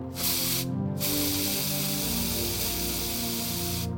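A fresh can of maximum strength aerosol hairspray is applied liberally to a hairstyle, hissing out in a loud, steady spray, broken by a brief pause after the first short burst, then continuing in one long, even blast with a low tonal hum underneath.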